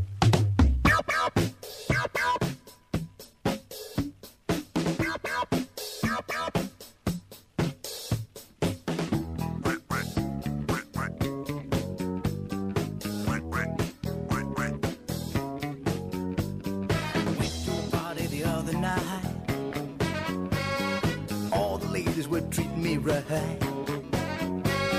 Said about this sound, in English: a successful DJ who decided on a lark to go off with his own novelty hit. You probably know it.